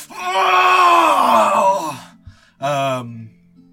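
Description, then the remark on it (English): A loud agonized scream from a single voice, performing the character Suranam as a blade is stabbed into his chest during a spell in a role-play, holds for about two seconds, its pitch sagging, then breaks off; after a brief pause, a shorter strained cry follows. “As the spell reaches its pinnacle, Rainer comes in, stabbing directly into his chest with the blade, and you hear Suranam let out this scream.”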